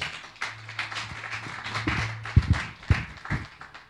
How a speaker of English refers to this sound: Clap your hands, church.